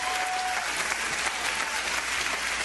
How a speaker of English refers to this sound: But it's a big applause line, though.